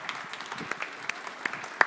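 A crowd claps steadily for helpers called to the front, a dense patter of many hands with a few sharper, louder claps standing out above the rest.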